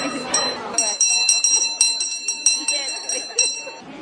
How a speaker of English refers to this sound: The sound of the bell is sort of our opening of the market each Saturday at 11 o'clock. So come on down, especially if you hear the bells ringing, you know the farmers market is opening up.